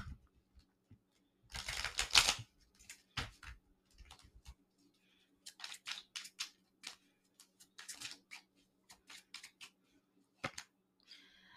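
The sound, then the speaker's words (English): Cards of the Self-Love Deck, a card game by Tonight's Conversation, being shuffled: a longer riffling burst followed by a series of short, crisp snaps and flicks at irregular intervals, with no one speaking. “And we're going to shuffle it up and we're just going to answer some questions, all right, that surfaces from the cards.”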